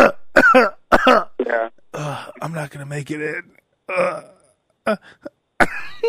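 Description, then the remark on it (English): A few forced, exaggerated coughs burst out at the start of a phone call calling in sick, followed by a hoarse voice speaking weakly, then one more staged cough near the end. “The fake cough?”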